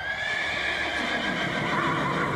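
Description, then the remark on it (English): A knight's horse whinnies loudly as it rears during a jousting charge in a festival arena, a long, shrill, wavering neigh that holds for a couple of seconds over a busy background of rumble and faint hoof clatter. “Oh no, Sir Stanley's horse has reared and this knight is on the ground.”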